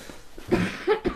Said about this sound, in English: You get the coughs when you've been crying, but this is different. Yeah, this is... Hurdy cough. You're actually sick.